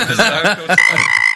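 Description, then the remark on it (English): A frog croaks loudly, giving a few quick, throaty calls that slide into a steadier, higher-pitched trill, with no one talking over it. “I don't know why, but the frog just always like underwhelms me.”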